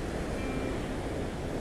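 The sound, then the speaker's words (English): A steady, broad wash of ocean surf at Myrtle Beach rolls on without pause, fairly soft and even in level, with no distinct single wave crash standing out and no voices. “We are at Myrtle Beach, one of my favorite places in the world to be, and we're going to do some breath work while listening to the ocean waves, doing some breathing and relaxing your body.”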